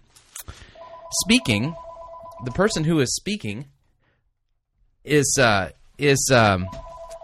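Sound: telephone ringing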